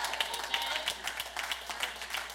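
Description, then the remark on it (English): A crowd claps steadily as praise to God, many hands producing a dense, crackling patter that holds at a moderate, even level for the whole stretch without building or fading. “Don't give him an opera clap.”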